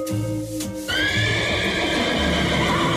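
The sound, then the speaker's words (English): A horse lets out a loud whinny that rises sharply, then trails into a long wavering neigh lasting a few seconds, with no talking. “I have Creepy Children, number six, and horse neighing.”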